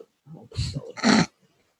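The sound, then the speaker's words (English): A female puppy of about 14 weeks, chewing on a toy, lets out two short, gruff growling bursts, with faint rustling and breathy noise between them, then falls quiet. “But stop chewing on the toy. I got this new puppy.”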